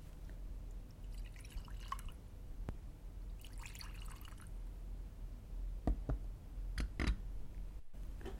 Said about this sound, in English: Would an ad man pour us two more drinks right about now? Yes, I'm certain he would.